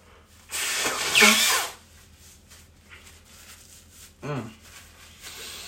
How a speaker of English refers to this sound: I gotta blow my nose, I'm not gonna lie